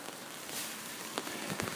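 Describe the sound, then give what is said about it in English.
Steady rain patters on a hard surface in the woods in Vancouver at about 5 a.m., a soft continuous hiss with a few sharper drips and taps standing out near the end. No voices are heard. “It's another rainy day.”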